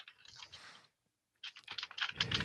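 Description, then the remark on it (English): Rapid typing on a computer keyboard in two bursts separated by a brief pause, the second burst denser and louder with clustered key clicks. “What are you doing? I'm typing.”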